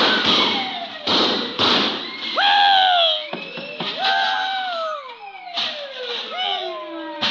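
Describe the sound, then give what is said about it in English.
A loud, noisy clatter of bells, pots and pans from a table being banged: several sharp crashing hits spaced irregularly, with ringing, swooping tones sliding down in pitch between them. “Bells, pots, pans, everything. Well, I guess as well give them a whirl, too.”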